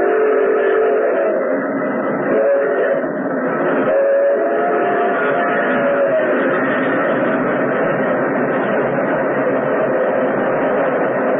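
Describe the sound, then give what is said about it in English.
An express train engine roars out of a tunnel mouth, steadily for about eleven seconds, a loud, dense rumble with brief whistle-like tones rising above it around the middle, and no voices. “Like an incredible, fiery-eyed monster, the express engine roared out of the tunnel mouth.”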